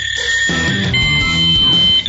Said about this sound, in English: You can probably hear my fax machine. That's my research assistant sending me some news tidbits that she thinks that I should read on the air.